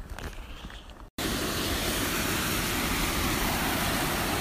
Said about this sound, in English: So as you may be able to tell from the background noise, I'm currently at a waterfall. This is a little cascada, it's called, so a little picnic area next to the Rego Fondón.